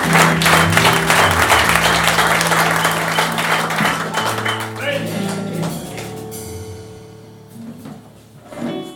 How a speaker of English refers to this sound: A round of applause for Brother Promise and Sister.